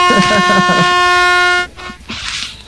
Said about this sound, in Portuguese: Eu vou tomar a buzina de novo, vai, só. Ah, não acabou ainda? Toma então.